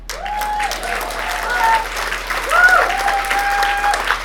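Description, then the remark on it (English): A crowd claps steadily for several seconds, with cheering voices and a few high, rising-and-falling whistles riding over the dense applause, which swells slightly toward the end. “And we're going to do a cheer for this one as well.”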